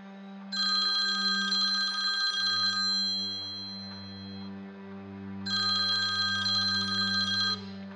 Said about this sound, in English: It wasn't much later, though, that the phone rings at the Gosh home.